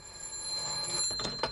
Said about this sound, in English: Now, what can that be? Well, obviously, it's somebody ringing up